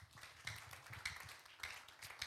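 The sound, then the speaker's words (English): A crowd claps hands together in a steady rhythm, with strong accented beats about every half second over a dense wash of scattered clapping and a low background rumble. “I'm teaching you, clap your hands.”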